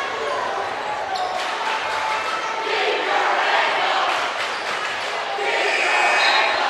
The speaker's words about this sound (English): The chanting between student sections is quite a sight to see. Yeah, Santa Fe has brought a big crowd tonight.